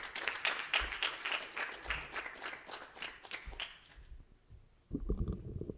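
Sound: audience applause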